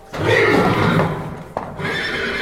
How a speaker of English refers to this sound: The eyes of the horse next to Jim glowed red as it started to shake and snort. It let out a long whinny